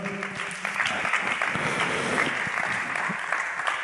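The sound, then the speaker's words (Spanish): An audience applauds steadily, a dense wash of clapping hands that fills the space for several seconds without pause, with a few faint voices mixed in. “Aplausos, por favor.”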